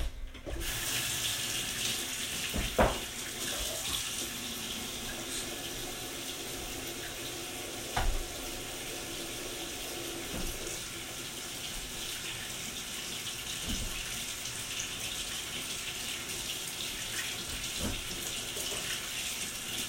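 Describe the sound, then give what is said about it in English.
A steady stream of tap water runs continuously into a sink, broad and hissing, broken by a few sharp clicks and knocks as a chicken egg is rinsed under it. No one speaks. “So I need to wash this real quick because our chickens are disgusting.”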